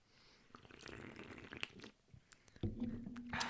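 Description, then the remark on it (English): Wet sips of Thai tea, a few quick slurping pulls with small clicks and swallows, fairly loud, with no talking. “Some good sips right there.”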